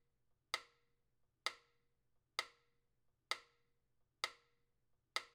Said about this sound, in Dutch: Wat hier klinkt is een opeenvolging van identieke, gelijk gespatieerde samples. Wat je waarschijnlijk hoort is tik-tak of tak-tik. Misschien lukt het met wat concentratie om dat onderscheid te elimineren.